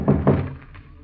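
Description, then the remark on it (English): Two firm knocks on a wooden door, dull, followed by a couple of fainter taps as the sound dies away. No voices. “Well, come on in. The door ain't locked.”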